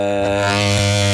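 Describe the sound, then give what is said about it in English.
A loud, steady synth tone through a saturation effect with wave-folding distortion, its XY control setting distortion shape and extent: a dense, buzzing stack of bright harmonics over a low fundamental, held continuously with slight timbral wobble and no voices. “just kind of a distortion-y kind of wave-foldy kind of thing.”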